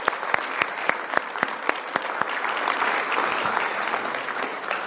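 A church audience claps together as a clap offering to the Lord, starting with a few sharp, evenly spaced claps that quickly blend into a dense, steady wash of applause lasting several seconds.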